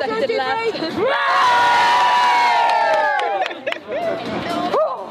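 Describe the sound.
A small group lets out a loud, sustained cheer lasting a couple of seconds, voices whooping together up close, then trailing off into scattered excited calls and chatter.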